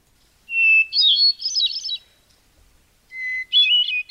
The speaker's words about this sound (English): You're listening to the song of a little brown bird called the hermit thrush. The song is well loved among humans as a twittery sort of birdie thing.